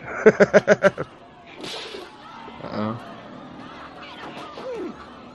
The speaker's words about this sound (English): And I also like that there's people in the background yelling, "Watch out!" Yeah, no shit. Watch out, he's got a whip.